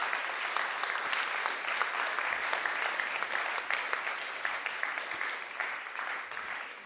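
A crowd claps steadily for several seconds, a dense, sustained burst of applause at a moderate distance with no voices on top.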